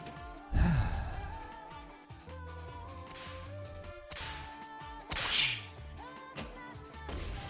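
A sharp whip crack from a pinball machine snaps out near the start, then several more quick swishing lashes follow over a busy backdrop of electronic game music and machine sounds.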